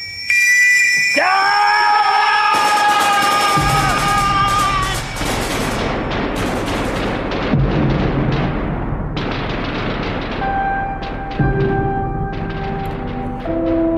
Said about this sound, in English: So they go up out of the trench, and it goes into slow motion as explosions happen all around them.